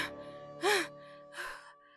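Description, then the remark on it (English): Two heavy, breathy pants from a woman out of breath with exertion on a lighthouse stairway, the first a sharp voiced gasp and the second a softer exhale, with no words spoken. “Panting with exertion, she repeated her warning.”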